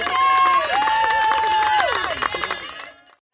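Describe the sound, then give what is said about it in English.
A lively crowd at Lalor Parkrun cheers and shouts for about three seconds, cheering in another graduate, with overlapping voices and sustained high calls, loud throughout before dropping off abruptly at the end. “So the crowd here is cheering in another graduate today at Lalor Parkrun.”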